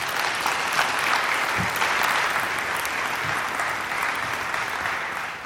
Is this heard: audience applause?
yes